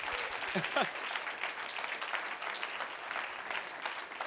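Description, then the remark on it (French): Many hands clap steadily together in a thick, continuous wash of applause that holds for several seconds, with a brief rising vocal whoop early on. “You have two hands. You can clap better than that.”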